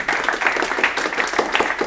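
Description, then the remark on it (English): An audience applauds steadily, a dense patter of many hands clapping at once that keeps an even, fairly loud level from start to finish, with no voices standing out. “Round of applause for all of you.”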